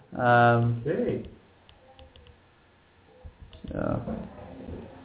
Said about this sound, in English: Okay. So, I'm typing something up.